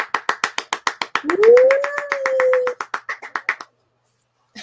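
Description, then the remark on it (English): Rapid, steady hand clapping, loud, runs for a few seconds before stopping abruptly, with a sustained voiced whoop rising over the claps partway through. “Applause!”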